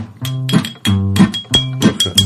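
Bright clinks of an object being tapped against something as percussion, repeated in a loose rhythm, sounding over steady sustained musical tones, moderately loud.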